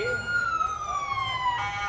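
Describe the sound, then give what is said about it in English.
The siren of the official pace car, a Cyclone GT, wails with a steady, piercing tone that slowly glides downward in pitch, loud over a low rumble of crowd and engine noise. “Hey, can you make that car more annoying?”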